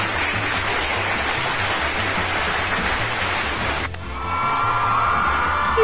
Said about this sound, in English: Does Forever Sonic deserve an applause? Maybe.